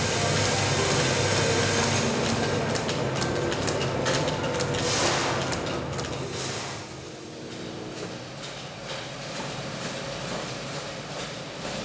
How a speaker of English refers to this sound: we're just roasting away on what we call a vintage Probat drum roaster